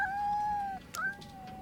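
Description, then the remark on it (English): A little black cat named Cleo meows twice in a movie: a long, drawn-out cry followed after a brief pause by a shorter, slightly rising one, both clear with no one talking. “there's a cat named Cleo in the movie, a little black cat”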